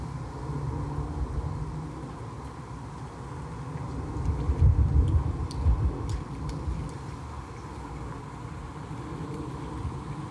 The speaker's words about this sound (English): Airplane above, life around me.